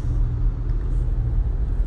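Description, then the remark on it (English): Steady low-frequency road rumble from inside a moving car, heard over a phone, a continuous droning hum that fills the whole stretch without any talking. “In a car, on a phone.”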